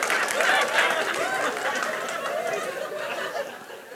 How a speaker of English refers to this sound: whoa, don't clap for her. No, this is my illustration. Whoa, this is backfiring. No, stop that.